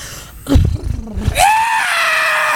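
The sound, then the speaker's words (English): A voice imitates a horse with a burst of rough, sputtering vocal noises, then another voice lets out a long, loud, sustained scream that slowly drops in pitch. “Can you do the horse and you do the scream?”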